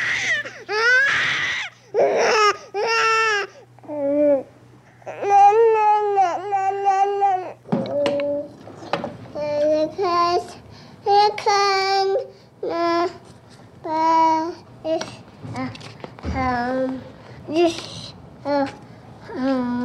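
A sped-up recording of a child from birth onward: high-pitched infant cries and wails give way to quick babbling and chirpy vocal bursts, coming in rapid, choppy fragments throughout.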